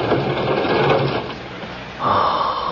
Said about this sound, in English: pull that John Doe drawer open, will you? I'll pull back the chute.